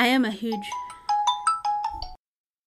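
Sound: phone ringtone ringing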